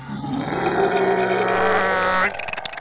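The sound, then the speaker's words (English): A person voices a long, loud, gravelly monster roar, held steady for about two seconds before cutting off into a brief rasping trail. “And you can see that there's these like red and brown bristly-like hairs that stick out from all over its huge hulking body, and these giant pincers that come down on either side of its face, and it lets out a terrible roar.”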